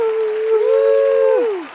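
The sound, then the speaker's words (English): A single drawn-out cheering whoop rises, holds, then slides downward, carried over a steady wash of clapping and crowd applause that fades as the shout drops away. “Yeah, like claps and applause.”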